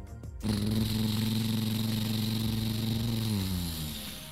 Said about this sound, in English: Well, meanwhile, Jaden was mowing his lawn.